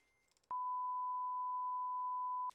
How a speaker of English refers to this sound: My timer for my tomato soup went off, so I had to check on that.